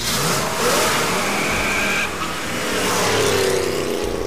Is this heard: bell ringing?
no